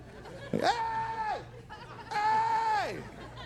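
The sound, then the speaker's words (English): Two long, drawn-out sheep bleats, each about a second, with a short pause between them. They are loud, over a faint steady background hum, and the pitch sags at the end of each call. “What they'll do when they're in danger is they look for other sheep, and they pack together, and they yell for help.”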